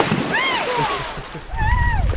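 A belly flop into shallow water: a burst of splashing and sloshing bursts up in the second half, while high, wavering voices call out over the water before and during it.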